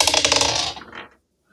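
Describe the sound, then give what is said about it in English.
A quick clatter of dice being rolled for initiative, tumbling and rattling across a hard surface, a dense burst of sharp clicks for about a second that trails off into silence. “Everybody needs to get their dice ready.”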